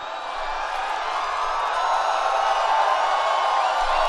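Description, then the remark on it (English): A large crowd at a Donald Trump rally roars and cheers wildly, a dense, steady wall of voices and shouts that stays loud and unbroken for the whole stretch, with no single speaker standing out. “And the crowd went wild with cheers.”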